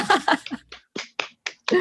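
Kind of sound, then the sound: human body sound, hand clapping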